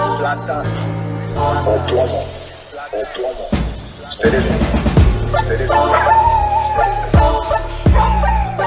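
A handful of sharp barks from the dog Jax land at irregular moments over loud, steady music, blending in closely enough that they almost sound like part of the track.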